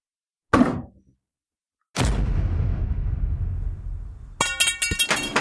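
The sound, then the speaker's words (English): A sharp thud, then a heavier door bang with a lingering rumble, followed by a quick run of rattling knocks near the end as someone comes to the door. Fairly loud, with no talking. “There's somebody at the door.”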